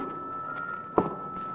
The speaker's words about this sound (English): Then as they came closer, you heard uneven, heavy-footed steps.